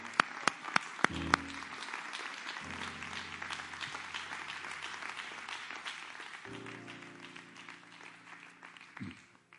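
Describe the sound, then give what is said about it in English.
A church audience claps their hands to the Lord after a psalm, in a sustained burst of applause, dense and steady, with a few sharp isolated claps at the start and low sustained tones humming underneath. “I think you ought to clap your hands to the Lord for that.”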